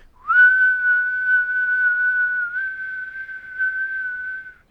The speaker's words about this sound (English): Now sometimes even with my current person, sometimes when we're out, I just do a long whistle, and like I think I may have done that a couple times with you guys when we separate at the store, but I go.